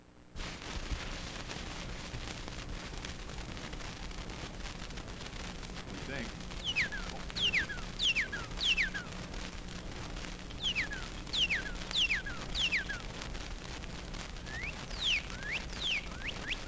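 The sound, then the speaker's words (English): A northern cardinal sings clear, downslurred whistles in repeated bursts of three or four, over the steady crackle and hiss of an old 78 record. A voice speaks briefly at the start. “You may not recognize the call, but you'll recognize the bird that sings it.”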